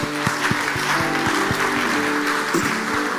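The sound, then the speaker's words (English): An audience claps for itself loudly and steadily after over an hour of prayer, the dense applause carrying a regular beat over a low sustained musical tone, with no voices rising above it. “Clap for yourselves.”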